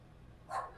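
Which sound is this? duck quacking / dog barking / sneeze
dog barking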